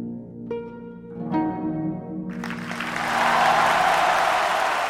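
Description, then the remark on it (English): A held harp chord rings out at the end of a performance in a theater, then the crowd bursts into a standing ovation, loud, dense applause that swells and keeps going to the end, overtaking the fading music. “When he came to the end of his performance, the crowd went wild, and he got a standing ovation.”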